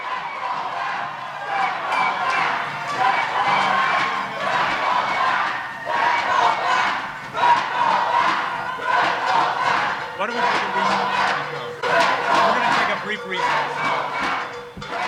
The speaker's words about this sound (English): So at the most recent hearing, all of this kind of came to a head. Tenants, advocates, and some electeds jumped on stage and they started protesting around the board members, basically disrupting the meeting.